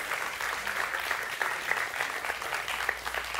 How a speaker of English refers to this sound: And I'm sorry. You can clap for that.